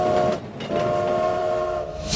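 A loud, sustained train whistle blows over rumbling railway noise, holding a steady tone for about two seconds with a brief dip partway through. No one speaks.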